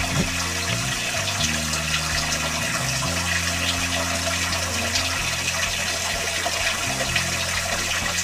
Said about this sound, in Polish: Strumień wody jest maksymalny. Uwaga. 238 bar. Liczę, ile wody przepłynie przez 1 minutę.